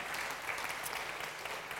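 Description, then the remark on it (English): The audience of Jubilee Central Church applauds a woman just prayed for before she visits Shine, a steady wash of many hands clapping at an even, sustained level for the whole moment, with no voices standing out. “Let's give Sue a round of applause.”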